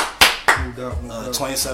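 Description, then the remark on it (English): Two sharp hand claps ring out loud, a quarter second apart, then voices start talking right after. “Clap it up.”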